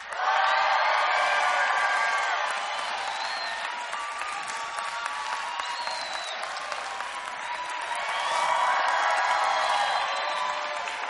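A large crowd claps and cheers continuously after being invited to make any sound they want, with whoops and shouted voices rising over dense applause, swelling loud at the start and again near the end.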